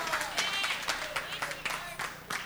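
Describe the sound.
An audience claps to encourage a preaching pastor, in a steady, uneven patter of sharp slaps, with louder bursts every fraction of a second over a busy murmur of voices.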